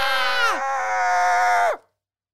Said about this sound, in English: Why are you screaming, my sister? Why are you screaming, my sister?